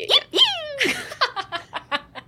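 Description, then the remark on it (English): A voice imitates a prairie dog call with two sharp, high-pitched squeaky chirps that sweep upward, then a breathy burst and a quick run of short, rhythmic laugh-like yips. “Hey, do you speak prairie dog?”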